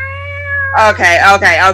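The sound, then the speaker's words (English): A person mimics a cat yowling as if grabbed by the tail: a steady held tone, then three loud, wavering, drawn-out cat-like wails in quick succession, over a low constant hum. “That's called playing Fire Engine. You just grab the cat by the tail.”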